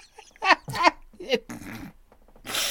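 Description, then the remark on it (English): Three sharp, squeaky hiccups in quick succession, each a brief voiced gulp, followed by rough breathy exhaling and a hiss of air at the end. “Oh, I love King of the Hill, and I love your little hiccup attack.”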